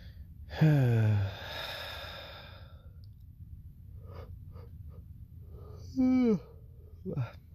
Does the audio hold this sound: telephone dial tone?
no